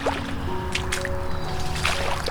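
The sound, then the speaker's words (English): Rubber boots wade through water a few inches deep, sloshing and splashing in a few uneven steps, over a steady outdoor background with faint thin tones that may be birdsong, on the 1st of May during birding by ear. “Very glad I brought rubber boots. Water here is a few inches deep.”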